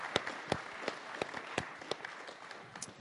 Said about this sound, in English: Let's applaud those that helped right here off the bat.